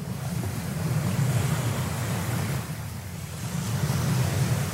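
Steady roar of ocean surf with a broad, hissing wash and a slight swell midway, like waves breaking continuously, with some wind rumble and no voices.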